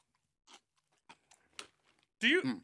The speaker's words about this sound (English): Let me get this crunch.